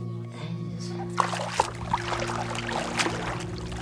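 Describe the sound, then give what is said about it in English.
Water sloshes and splashes at an uneven pace, with a few sharper splashes standing out, as a woman paddles around on an old surfboard on a small lake, over a steady low background hum. “paddles around on an old surfboard while I sit on a decrepit wooden dock with my feet in the water.”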